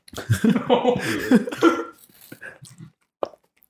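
Muffled voices and vocal noises come first, then a quieter stretch broken by one sharp, short hiccup, close and fairly loud, standing out on its own near the end.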